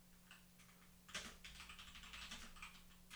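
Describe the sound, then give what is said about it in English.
Rapid clacking of keys on a loud, old-fashioned keyboard, a quick irregular burst of typing that starts after a brief pause and continues steadily, with no one talking. “Yes, I have a loud, old-timey sounding keyboard.”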